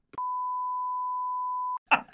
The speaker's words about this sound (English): Oh, yeah, that's also something I beeped out when you made some very rude jokes about that goat.